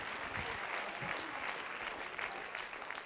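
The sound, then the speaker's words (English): An audience claps their hands in steady, dense applause, a continuous crackling wash of many overlapping claps holding an even level throughout. “Would you clap your hands and would you shout unto God?”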